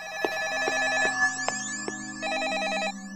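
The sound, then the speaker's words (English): A telephone rings in a museum with a trilling, warbling electronic bell in repeated bursts, steady, with no one speaking over it. “The phone's ringing, but where is it coming from?”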